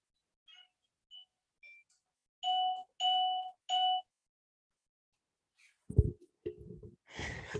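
A few faint electronic chime blips, then three loud, steady doorbell tones ring in a row, followed by clunking and rustling sounds; no one speaks.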